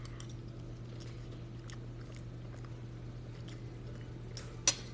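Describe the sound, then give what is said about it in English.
Quiet, wet chewing of naan pizza with LaCroix accidentally poured on it, with soft irregular clicks and smacks over a steady low hum, ending with one sharper crunch near the end. “Eating Naan Pizza Live”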